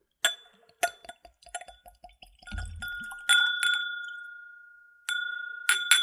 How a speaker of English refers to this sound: So let's go ahead for a pour. We'll pour the whole 50 milliliters into our clean Glencairn.